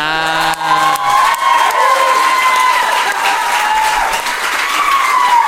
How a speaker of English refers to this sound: Guys, this is a really short question, and I'm pretty sure it can just be resolved with a large and long round of applause.